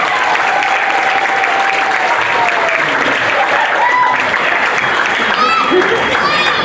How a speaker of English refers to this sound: kids another round of applause.